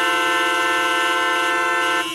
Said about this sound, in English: Like, you notice how much you abuse it when you're no longer using your own horn, when you don't have a horn to use. Now, I began to hear and notice how much we're slaves to just pushing that honk button just every day.